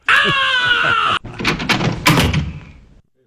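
A loud, sustained scream lasts about a second and cuts off abruptly, then a door rattles and creaks open with clattering, scraping noise that fades out.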